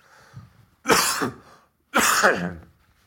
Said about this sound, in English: The reason I'm hesitating, folks, is I'm going to have to cough a little bit violently, so apologies for this.